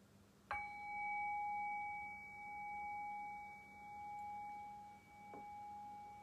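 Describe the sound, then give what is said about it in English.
A meditation bell is struck once to begin a brief guided meditation, and its clear, pure tone rings on for several seconds, gently pulsing and wavering as it slowly fades. “Okay, so I'll ring the bell and I'll guide us through this very brief meditation.”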